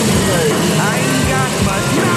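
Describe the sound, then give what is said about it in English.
An old car engine idles with a steady, loud, rough rumble that fills the whole moment, while indistinct voices talk over it. “That sound. I had an old ass car.”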